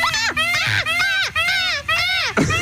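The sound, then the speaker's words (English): A voice imitates a peacock call: four loud, shrill, wailing cries in quick succession, each rising and falling in pitch, separated by brief breaths. “If you get that bird, what's that bird? Peacock.”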